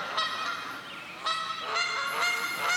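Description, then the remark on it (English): Several geese honk repeatedly in loud, harsh, overlapping calls, a noisy flock with no pauses between the squawks. “Geese. Don't you love them?”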